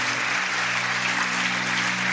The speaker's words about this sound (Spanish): Denle un aplauso a ellos, por favor.